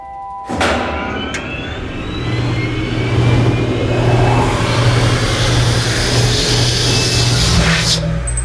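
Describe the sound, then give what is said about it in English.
A clean room vacuum pump kicks on abruptly and runs steadily, a loud mechanical drone with a low humming tone and a rushing whir that builds slightly and holds, with no voices. “Beginning clean room vacuum protocol.”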